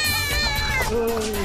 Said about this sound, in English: And then just like every few seconds, just a cat screeching. It can be the same stock sound effect.